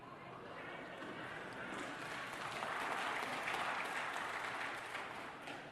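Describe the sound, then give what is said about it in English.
An audience breaks into sustained applause, a dense wash of clapping that swells louder midway and holds steady for several seconds before easing slightly at the end. “Give Jesus the applause, not me, okay?”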